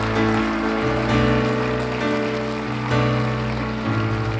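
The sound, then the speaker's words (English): An audience at a church service claps steadily, a dense, continuous patter of many hands, with sustained musical chords playing underneath and shifting every second or so. No voices stand out. “Would you join heaven this morning and give in heaven, giving them a big round of applause?”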